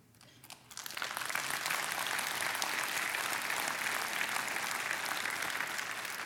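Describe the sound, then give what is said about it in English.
A large audience bursts into applause after a brief quiet moment, the clapping swelling quickly and holding steady and dense for several seconds, with no talking. “I was going to say 9 o'clock clapped. All right, so you guys were a little late to the game, but I get it.”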